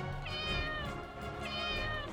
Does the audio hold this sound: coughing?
no